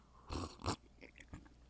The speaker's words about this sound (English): Pardon me while I take a sip of this delicious coffee, which is going to wake me up a little bit.